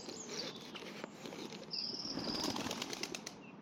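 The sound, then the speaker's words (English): A flock of startled pigeons bursts into flight, a loud flurry of flapping wings that swells and carries on steadily for a few seconds with no one speaking. “Oh, something spooks the pigeons.”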